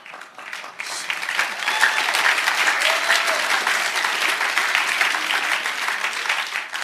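A crowd applauds a speaker about to begin, dense clapping rising quickly after a brief quiet start and holding strong for several seconds, with faint voices mixed into the noise.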